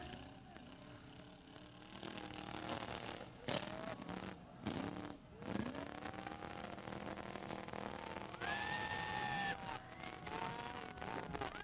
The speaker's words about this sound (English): Yeah, you hear the monster truck just goes up into the stands. I believe there were some children that were killed in this accident.